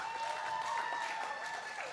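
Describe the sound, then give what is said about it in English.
An audience applauds steadily to vote for Adam Lee as winner of a debate round, a dense wash of clapping that holds at an even, moderate level for the whole stretch without fading, with no voices rising above it. “Guys, give it up if you think Adam Lee took that round.”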